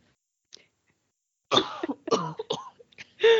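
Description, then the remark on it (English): A person coughs in a quick burst of several harsh coughs with some throat clearing, after a brief faint click, with no talking. “if you have the thing where you can't stand certain sounds and one of those sounds is people coughing, maybe just skip this episode because I'm not going to go through and delete all the coughing because it would take a really long time.”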